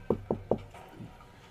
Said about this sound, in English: and he's sitting in his study and he's looking over a series of papers and seeming a bit frazzled, and a gentle knock on the door.